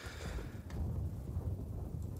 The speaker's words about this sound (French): Avez-vous entendu? Il y avait un coup de tonnerre.